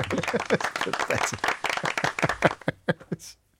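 A short burst of enthusiastic applause from a small group, dense rapid clapping that fills the moment, then thins to a few scattered claps before fading out.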